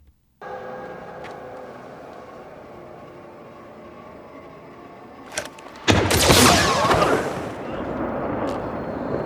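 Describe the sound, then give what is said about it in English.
Dramatic orchestral film score from a showdown scene, with sustained, droning tones building tension, then a sudden loud burst of crashing, rushing sound effects that overwhelms the music for the final few seconds. “Again, it's probably not going to be stunning audio, but hear the drama, hear the music.”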